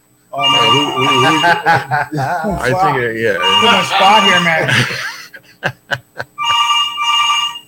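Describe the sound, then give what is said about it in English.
A phone rings on an outgoing call, a steady electronic ringback tone sounding under men talking and laughing, then ringing clearly on its own at the end after a few sharp knocks. “Man, they need to pick up their phone.”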